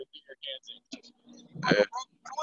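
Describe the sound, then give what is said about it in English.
Short, nasal, duck-like bird quacks come in a quick irregular string, with one louder, harsher squawk near the middle, heard while golfers tee off on a golf course. “Can't take them damn birds nowhere.”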